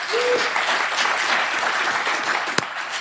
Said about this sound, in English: So please give a very big round of applause for the amazing John Brockman.